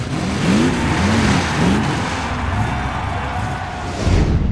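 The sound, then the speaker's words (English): A monster truck engine revs in several rising surges, roaring loudly over a dense, roaring Las Vegas crowd, with a deep rumble swelling at the end; the trucks are Flamethrower and the Truckinator, the two biggest monster trucks ever. “This Las Vegas crowd is roaring to see the two biggest monster trucks ever, Flamethrower and the Truckinator, to see if they have what it takes to fly.”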